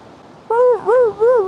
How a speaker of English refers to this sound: Get back on the sled. God, I hate those dogs.